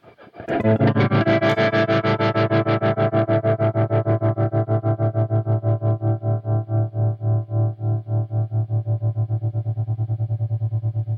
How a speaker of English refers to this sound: All right, so it's designed to give you the ultimate Fullerton California black panel vibrato channel reverb. So Fender Blackface.